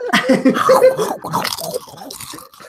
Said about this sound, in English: All right, I'm just going to sit here crunching into the microphone for the rest of the game.